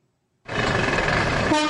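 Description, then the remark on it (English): After a moment of silence, a loud, dense wash of traffic noise starts abruptly, with sustained blaring vehicle horns layered over the rumble of a busy bus station in Nairobi, Kenya, continuing steadily to the end. “At a bus station in Nairobi, buses were not only loaded with humans and cargo, but with cash.”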